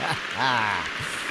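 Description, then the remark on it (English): A steady wash of crowd applause for Aaron Judge hitting his 61st home run of the season, dense and hissy like rain, runs through the whole moment while a voice speaks briefly over the clapping. “Yes, more applause. Clap it up.”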